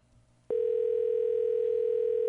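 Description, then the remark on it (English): A faint low hum, then a telephone dial tone switches on abruptly as the phone is picked up to dial a call, and holds steady and loud, a continuous unbroken drone to the end with no keypad beeps. “Okay, why don't you go ahead and pick up the phone there and dial.”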